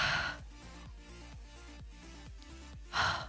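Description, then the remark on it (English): A breathy exhale rushes out at the start, followed by a quieter stretch with a low rhythmic hum, then another forceful puff of breath near the end. “Okay, ready? Breathing out.”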